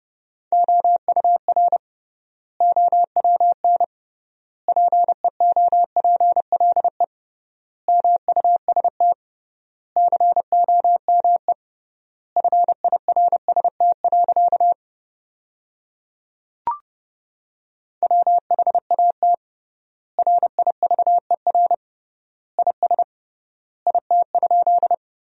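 Morse code sent at about 30 words per minute, sentences from the 300 most common words with triple word spacing: a single steady mid-pitched tone keyed in quick dots and dashes, grouped into words separated by long pauses, with one brief click partway through.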